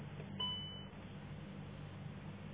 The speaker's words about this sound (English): My fuel cap is not open. I can see it in the damn mirror. But anyway, that's what that beep was.